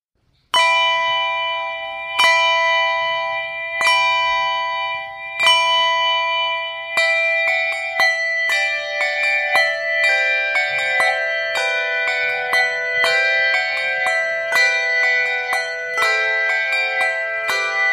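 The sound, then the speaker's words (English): Several handbells ring together in a bright, chiming sequence: a few single strikes with long ringing decay at first, then a quicker overlapping melody of many pitched tones sustained throughout. “Now, handbells sound very nice on their own, but when you put several together, oh, it sounds absolutely wonderful.”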